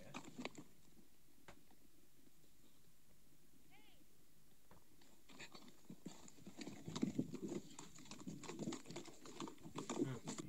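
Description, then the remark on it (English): A quiet stretch with a few faint clicks and a brief chirp gives way to a horse bolting into a fast gallop, its hooves clattering in a rapid, steadily louder rhythm. “Yeah, the horse literally bolts, though.”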